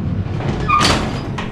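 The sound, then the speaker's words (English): A heavy metal shipping container door in a warehouse scrapes and bangs as it is popped open, with a brief high screech of metal, a broad clattering burst, then a smaller knock, over a low rumbling background. “Pat walked up to the shipping container and popped the door open.”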